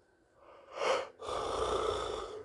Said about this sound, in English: Got the yawn going. The yawn going.